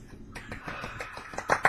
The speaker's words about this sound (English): Golf clap.